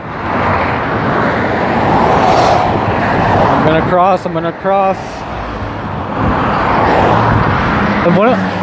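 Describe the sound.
Cars roar past at high speed, about 80 miles an hour, on a freeway in Mexico in a steady, loud wash of road noise, swelling and fading as each vehicle rushes by, while a man standing in the middle of the freeway waiting to cross speaks briefly over the traffic.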